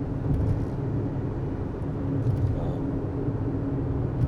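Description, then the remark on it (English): Steady low rumble of road traffic, cars passing nearby in a continuous drone with faint tire hiss, no voices. “I hope that for all the people that are driving in the cars around me right now.”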